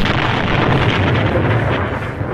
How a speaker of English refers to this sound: And there's a big explosion, which is a relief because I get to use my favorite sound effect in this last episode.